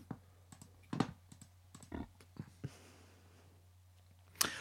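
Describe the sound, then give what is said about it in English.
A computer mouse clicks several times at an uneven pace, soft taps separated by short pauses, with a sharper click near the end over a faint steady hum. “Am I clicking something? Yeah.”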